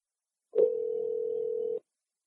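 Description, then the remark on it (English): A telephone dial tone as a call is placed to author Greg Bear: one steady, clear electronic hum lasting just over a second, starting with a faint click and cutting off cleanly, with no voices around it. “Okay, so let's get Greg Bear on the phone.”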